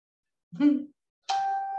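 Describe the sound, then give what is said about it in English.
A brief vocal sound, then a single bright phone notification ding rings out clearly with a sustained tonal shimmer that holds steady for about half a second. “And my phone just went ding.”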